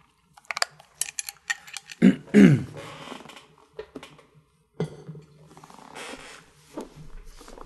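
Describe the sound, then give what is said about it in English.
Quiet sips of water with small wet mouth clicks, a couple of louder gulping swallows, then softer sipping and breathing, with no one talking; a person drinking water after a long reading aloud. “After a long reading, I always need to have a zip of water.”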